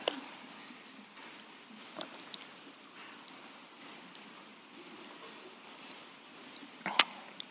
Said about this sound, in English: So there's a glass of water, we call it a glass of water. I think everybody would agree that that is a glass of water. You can do a magic trick though. And then as I drink it,